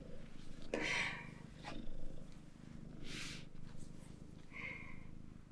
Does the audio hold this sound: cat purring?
yes